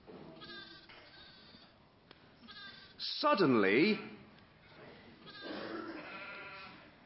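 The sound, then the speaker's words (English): A single loud, wavering sheep bleat rings out in the middle, from sheep kept under night watch by camping shepherds, while quieter voices talk softly before and after it. “They had set night watches over the sheep.”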